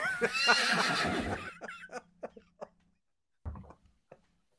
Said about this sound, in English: Dumb horse.